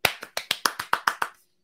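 crowd, hand clapping

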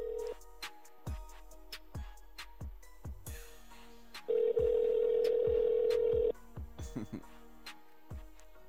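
signal or alarm, telephone dialing and ringing

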